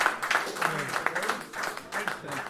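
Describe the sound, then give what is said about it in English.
An audience breaks into a round of applause for Theo Delaney, Jeff Pope and Brian Leveson, a dense, steady wash of clapping lasting a couple of seconds, with voices and cheers mixed into the noise. “But for now, big round of applause for Theo Delaney, Jeff Pope, Brian Leveson.”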